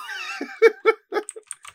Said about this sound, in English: So I got a new keyboard, guys. It's a little bit more clicky clacky than normal.